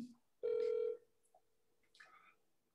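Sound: phone call ringing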